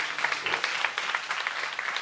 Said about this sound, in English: Yes, you can clap for them. That's fine. Totally fine.